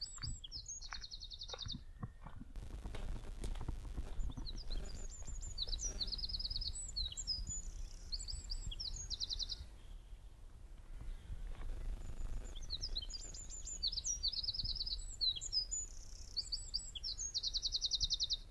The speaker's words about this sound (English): But hopefully I'll still be able to pick up some birdsong. There's a wren calling just up here.